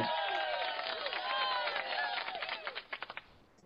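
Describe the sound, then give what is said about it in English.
A dense wash of crowd cheering and applause, slightly thin and tinny, thinning out into a few distinct sharp claps before cutting off abruptly. “High budget applause.”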